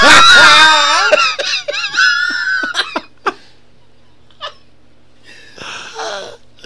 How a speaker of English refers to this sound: This is an even better one of a dude getting attacked by a cat, then once it's all over, he goes, fuck's wrong with that cat?